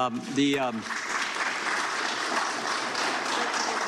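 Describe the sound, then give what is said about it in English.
An audience in a hearing room breaks into sustained applause, a dense steady patter of clapping, with a brief voice heard at the start before the clapping takes over, applauding a special counsel witness's reply and rejecting Steve Cohen's premise. “So not only did they end up laughing at Steve Cohen, they ended up applauding in rejection of Steve Cohen's premise that because you were appointed as a special counsel to investigate the origins of the Russia collusion investigation”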